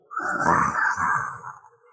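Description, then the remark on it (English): A loud, rough growl from inside a money cage by a gate rises abruptly and rumbles steadily for almost two seconds, with a gritty low texture and a strong mid-pitched core, then fades away at the end. “And as you get close to it, you hear what can only be described as a loud growl.”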